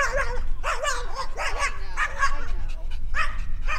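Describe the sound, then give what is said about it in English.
A small white dog playing on the grass with its owner yaps frantically at a passing dog, Dylan, in quick, high-pitched bursts, about eight sharp barks in under four seconds, loud, over steady low outdoor rumble. “As we're talking, we pass a small white dog playing on the grass with its owner. It takes one look at Dylan and it loses its mind.”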